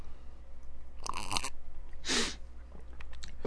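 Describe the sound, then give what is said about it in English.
Someone sips coffee: two short, breathy slurping bursts about a second apart, the second sharper and more hissy, over a steady low hum with no talking. “I'm drinking coffee right now, so if you heard that sound.”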